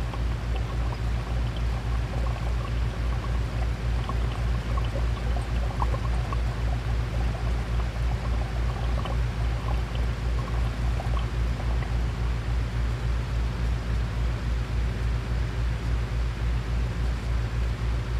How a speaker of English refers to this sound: Water sound 2.